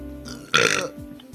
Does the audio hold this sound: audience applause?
no